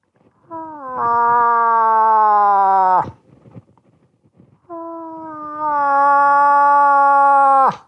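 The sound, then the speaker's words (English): A person imitates a cow moose call: two long, nasal, wailing moans, each held for a few seconds and sliding down in pitch at the end, with a short pause between them. “And then a lot of it came to rip a cow call for us real quick.”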